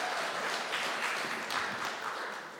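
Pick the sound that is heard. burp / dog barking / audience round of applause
audience round of applause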